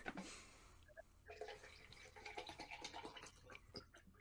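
Quiet water sloshing inside a water bottle, a few wet swishes and gurgles that come in irregular bursts over several seconds, with no voices present.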